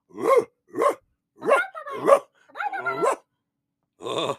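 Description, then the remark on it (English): Several dogs bark in quick bursts, a mix of sharp barks and yappy, whining yelps with brief pauses between, loud, with no talking over them. “hey, Georgie, who let the dogs in?”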